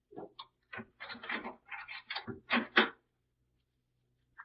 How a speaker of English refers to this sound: Give me your key. I'll open the door. Here.